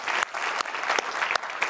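A church crowd applauds steadily to welcome the Montgomeryville campus joining them, a dense wash of many hands clapping at once with a few sharper claps standing out, continuous throughout.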